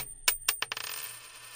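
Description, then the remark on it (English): A commemorative coin bearing rock critics Peter Guralnick and Lester Bangs is tossed and strikes a hard surface with two sharp metallic clinks, then bounces in quickening little taps and rattles to a stop, leaving a bright ringing tone that fades away. “Let us toss the coin.”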